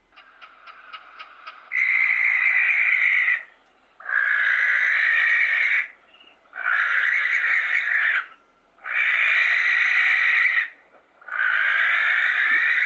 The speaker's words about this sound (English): Okay, I was just battling to get the sound because, as I said, they sound a lot like the grass owls, and they make a hell of a screeching noise, like you wouldn't actually put it to an owl, a typical like owl sound. This is it, yeah.